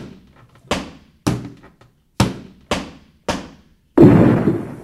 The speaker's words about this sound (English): Oh no. I was stomping when I should have been stamping. I hit the wrong fault.